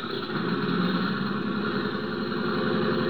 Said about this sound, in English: The passenger door was closed, and the big plane's engines were warming up for the trip to Dallas.